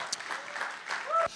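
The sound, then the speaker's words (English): An audience at a church service applauding Jesus, a steady dense patter of many hands clapping at a moderate level, with a few voices calling out over it. “So give Jesus applause.”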